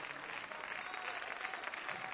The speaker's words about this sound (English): Let's get Jesus' hand clap.